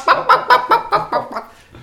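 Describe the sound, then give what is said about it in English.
A voice in a pop song, Israel's Eurovision entry, imitates a chicken with about eight quick, rhythmic clucking bursts, loud at first, then trailing off softer toward the end. “Some chicken for dinner, maybe?”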